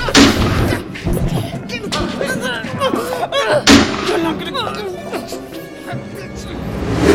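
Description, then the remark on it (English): Loud explosions boom out in sharp bursts, one at the start, another midway and a third at the end, with frantic shouting voices and rumbling chaos in between; an explosion that blows apart a tactical unit. “There was an explosion of some kind near Briggs that sent one of your tactical unit ops into pieces”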